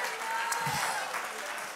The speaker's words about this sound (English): Somebody clap your hands and lift up the name of Jesus.